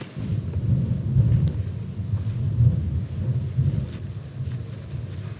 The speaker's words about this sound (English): even now we are amazed at Your power as we hear the thunder.